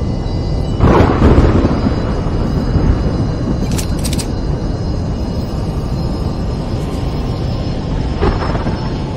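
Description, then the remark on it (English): A loud, continuous thunderstorm rumble fills the scene, with a heavy thunder crack near the start and another burst near the end. No one speaks. “Looks like we're coming on a pretty bad storm here, everyone.”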